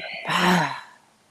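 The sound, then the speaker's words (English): A single breath in a breathing exercise, taken in through the nose and then a soft airy exhale pushed out through the mouth with a faint sighing tone, swelling quickly and fading within about half a second, with no talking. “Into the nose and breathing out of the mouth.”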